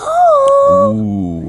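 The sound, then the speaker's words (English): A dog whines in a high, drawn-out note that slides down into a lower, throatier howl; one of three blink dogs on a mountain. It is fairly loud, with no talking over it, and lasts about a second and a half. “As you guys head up the mountain, you see three blink dogs.”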